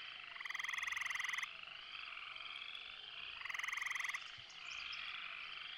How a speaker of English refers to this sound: I put in the frog chirping that means night in my audio editing vocabulary.